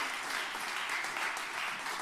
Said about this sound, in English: You can give the Lord a good hand clap as you're being seated tonight.